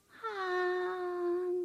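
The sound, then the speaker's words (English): A storyteller vocally imitates a goose sighing while telling the story Donkey and Goose: one long, steady, mid-pitched moaning tone that holds for over a second before cutting off, with no other sounds or speech around it. “This story features an unlikely romance and the cutest goose sighing I've ever heard.”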